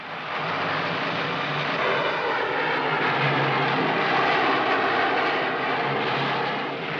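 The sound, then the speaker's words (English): A steady, loud roar of military jet aircraft engines fills the scene in the film Mothra, a broad rushing drone that holds evenly for several seconds as the planes fly overhead and fire missiles, with no voices present. “Only after the jets fire their missiles do you get the idea that these are oil drums meant to catch fire.”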